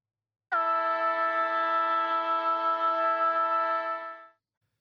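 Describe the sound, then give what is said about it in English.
A footy ground siren sounds one long, loud blast of about four seconds, holding a steady, buzzy horn-like pitch on its own before cutting off sharply. “that siren's getting louder and louder, and it's a lot longer than last week, so I'm pretty happy with this one.”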